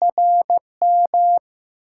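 A clear, steady tone keyed on and off in short dots and longer dashes, Morse code sent at 15 words per minute, with no voices or other sounds around it.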